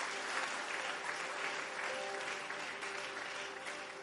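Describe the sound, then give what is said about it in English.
An audience claps hands steadily and loudly after being told to clap again and shout 'Lord, give me long life'. A dense, continuous wash of many overlapping claps holds at an even level for the whole few seconds, with faint voices and a low tone beneath. “Clap your hands again and shout, Lord, give me long life.”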